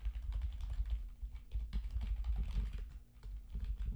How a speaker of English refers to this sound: is over there typing that bad boy up